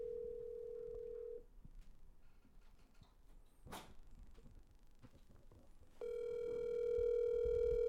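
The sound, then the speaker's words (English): A phone-a-friend call being placed during a quiz game: a steady ringing tone, a pause with a short sharp click, then a louder buzzing telephone tone that holds to the end as the call reaches voicemail. No one speaks. “We'll get him on the line.”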